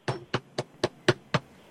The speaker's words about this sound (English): I'm knocking on the next door. Hello?